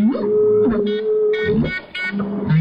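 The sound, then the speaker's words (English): A humpback whale's song mingles with a live clarinet broadcast through an underwater speaker: one long, steady reedy note is held while deep moaning whale calls swoop and bend around it, loud and continuous, with no voices. “this duet from down there, live clarinet and whale.”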